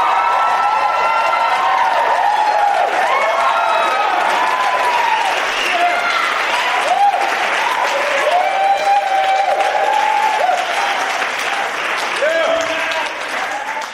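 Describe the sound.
A large audience applauds steadily for about fourteen seconds, a dense, loud wash of clapping mixed with scattered whoops and cheering voices, easing slightly at the very end.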